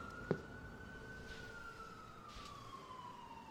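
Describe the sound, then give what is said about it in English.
A police siren from two cop cars out front wails, one long steady tone drifting slowly in pitch over a low background hum, with a single sharp click near the start. “What's going on out front? It's the cops.”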